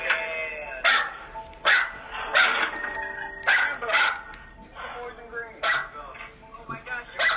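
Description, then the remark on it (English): A dog barks repeatedly and loudly, about eight sharp barks at an uneven pace, over a steady background of tonal, voice-like sound. “Try to hear it beside the barking dog, everybody.”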